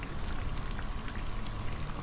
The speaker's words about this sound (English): Do you mind if I come in out of the rain? Sure. It seems like it's never going to stop.